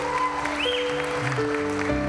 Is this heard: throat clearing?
no